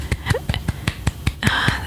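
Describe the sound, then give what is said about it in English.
A quick, steady run of about nine sharp hand claps, fairly loud, evenly spaced over a couple of seconds, with a faint voice briefly joining near the end. “Respect is one hand. Communication is the other. You need to put them together. Mm-hmm. And you need to... applaud.”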